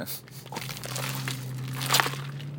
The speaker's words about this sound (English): Let me stir up my fiber water.